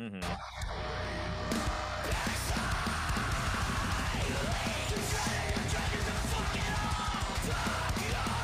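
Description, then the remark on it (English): Dense, loud heavy metal with distorted guitars and pounding drums filling the whole track, while harsh, gravelly screamed vocals, including a male backup screamer, tear over the top continuously. “The guy who's doing backup screams, I really like that dude's screams too. They're pretty fucking heavy.”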